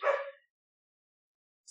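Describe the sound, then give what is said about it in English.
A dog gives one short, sharp bark, moderately faint, followed by more than a second of silence and a brief high-pitched sound right at the end. “Normally I try and mute it when they're barking, but I'm talking, so...”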